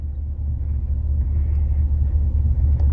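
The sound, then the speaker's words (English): A steady, loud low-frequency rumble fills the interior of a parked patrol car, like an idling engine heard from inside the cabin, continuous with no voices. “We are sitting in a patrol car.”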